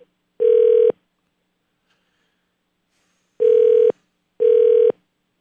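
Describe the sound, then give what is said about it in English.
Three steady phone keypad tones sound alone as a caller presses 3 in an automated phone menu to reach agriculture and pet supplies, one first and then two more in quick succession after a pause, each a loud, sustained mid-pitched beep lasting about half a second. “For agriculture or pet supplies, press 3. Or to I'm going to go with 3.”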